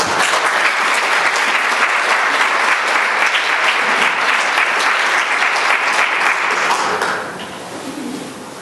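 Sustained audience applause welcoming the artist John Gerrard, dense and loud, a crowd clapping steadily for several seconds before it fades and thins out near the end.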